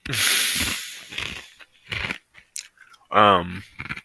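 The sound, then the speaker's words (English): Loud crunching as someone chews food, with a burst at the start followed by several shorter crunchy bites, broken by a brief murmured vocal sound. “Those are some mighty crunches.”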